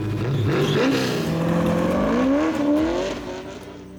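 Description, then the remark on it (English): The loud engine of a 1970 Mercury Cyclone revs continuously, its pitch climbing and dipping in waves before easing off and fading slightly at the end, with no voices. “He's being inducted into the Whiskey Car Hall of Fame later this month and given the honor of not only being the fastest whiskey car driver of the NASCAR era, but also having the fastest whiskey car in history, the 1970 Mercury Cyclone.”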